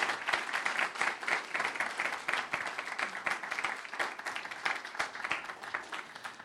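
An audience in Melbourne applauds steadily, many hands clapping in a dense, continuous patter that stays fairly even in loudness throughout, with no voices standing out.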